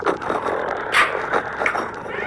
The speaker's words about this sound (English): Hey, sounds like my friends are here at the door. Your friends scratch at the door?